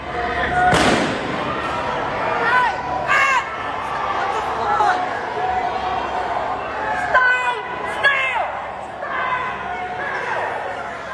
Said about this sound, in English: As they started, they opened fire from behind first.